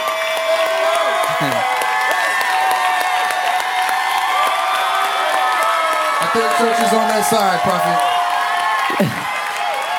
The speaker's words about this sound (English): Look at them, they're still clapping like this.